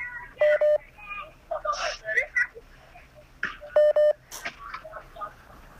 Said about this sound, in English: Well, let me just, see my phone, yeah, my phone's beeping, 1 second. Let this guy finish calling me.